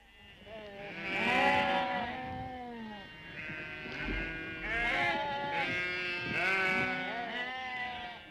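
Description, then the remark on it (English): Several sheep bleat over and over, their wavering, overlapping cries fairly loud, with a few low thumps underneath and no talking, during sheep shearing around Blessington, with men using hand-turned or motor-driven shearing machines. “All round Blessington and everywhere else, sheep shearing began, with men using the hand-turned or the motor-driven machines.”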